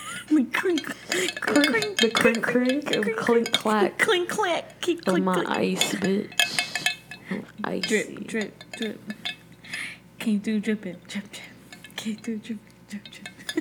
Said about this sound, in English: And I'm here enjoying a good old cup of iced coffee. It's fucking ASMR ass bitch. Always. You hear that? Hear that clink, crink.